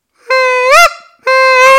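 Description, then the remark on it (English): Two loud, sustained goose call notes blown in succession, each a bright, reedy tone with a rising upward break at the end of the first; no talking over them. “Yeah, see, I'm trying to blow it like I blow the molt gear. I can't get that honk out there, so.”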